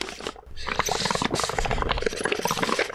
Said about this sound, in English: That's you drinking a coffee. That's not... You're doing your... Stop blowing bubbles.